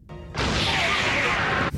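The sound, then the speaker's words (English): After a brief quiet moment, a loud explosion sound effect bursts in: a dense, roaring blast that holds for over a second before cutting off abruptly. “Get ready for an explosion.”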